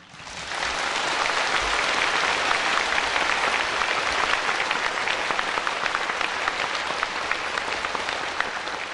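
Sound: audience clapping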